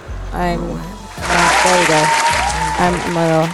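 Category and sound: crowd, hand clapping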